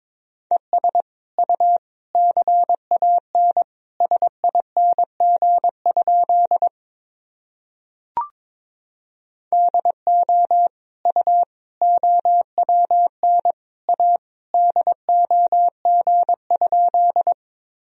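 Morse code sent at about 22 words per minute: a steady mid-pitched tone keyed in quick dots and dashes, two long runs broken by a short pause with a single click between them.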